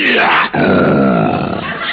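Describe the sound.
A voice imitates a lion's roar: a loud, rough, growling sustained bellow, briefly broken midway, then continuing in a long gravelly rumble.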